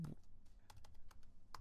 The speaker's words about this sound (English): Just even typing it in.